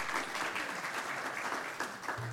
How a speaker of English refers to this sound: We'll give you a round of applause, I think.